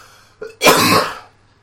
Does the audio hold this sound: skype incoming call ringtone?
no